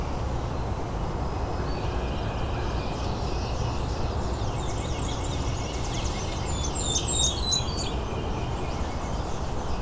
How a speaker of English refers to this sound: There's a Blackburnian warbler song.